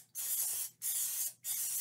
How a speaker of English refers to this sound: spray this really well with whatever kind of nonstick cooking spray you like to use